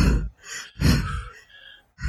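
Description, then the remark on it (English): A voice imitates heavy, controlled breathing of someone pacing around and trying to control their breathing: a couple of deep, audible breaths in and out, fairly loud, with slight sighing quality and no words. “she is now pacing around and trying to control her breathing like this.”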